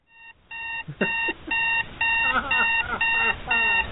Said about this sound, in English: Are you tired of the same boring Chinese-made alarm clock ordering you to get up every day?